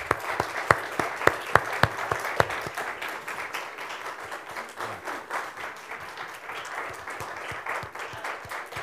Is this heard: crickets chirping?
no